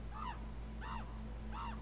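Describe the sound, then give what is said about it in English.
A raven gives three loud, hoarse calls at an even pace, each a short rising-then-falling cry, over a steady low background hum, as it flies by and disappears over a rocky ridge. “A raven”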